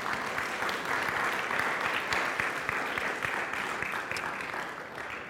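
A crowd applauds steadily, the dense clapping sustained and fairly loud throughout before easing slightly near the end, with no voices standing out.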